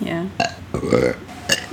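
A person lets out a close, loud burp, voiced and rumbling, with a few short throaty bursts around it and no spoken words.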